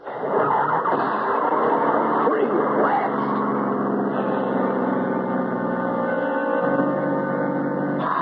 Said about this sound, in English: There's the road. And Charlie's car. Please start. Please.